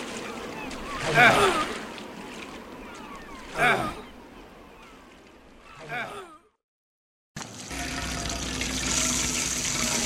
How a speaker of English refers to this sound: We keep a-bailing water out of this here floating barn, but I'm a-thinking the water's leaking in much faster than we're a-bailing it out.